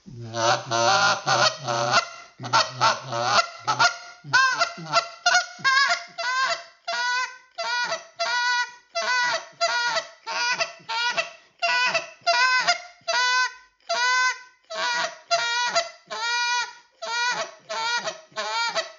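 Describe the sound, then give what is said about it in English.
A goose call is blown in a spit moan and ground murmur: a run of short, repeated honks and moaning notes in a steady rhythm, loud, starting with harsher, deeper calls before settling into quicker clucking moans; no talking. “So that's what I call a bit of spit moan, and then you can add a spit moan.”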